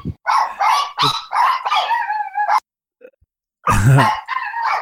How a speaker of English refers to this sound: chihuahuas are home.